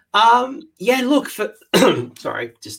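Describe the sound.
A person clears their throat and coughs in a handful of short, loud, voiced bursts, with brief pauses between each one.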